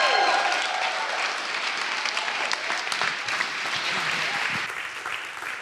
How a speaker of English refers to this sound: And so can I encourage you, whether through clapping or shouting, just to give Mark Sayers a warm welcome as he comes to share the word with us this afternoon.